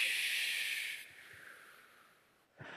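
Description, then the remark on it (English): A breathy, hissing whoosh from voices imitating wind swells loud, then slowly fades over about two seconds before a fresh whoosh starts up at the end. “Now the wind. Whoosh.”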